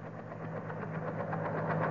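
A helicopter about to land on a front lawn drones steadily, a low engine hum with a faint pulsing rotor texture, swelling gradually louder over the two seconds with no voices.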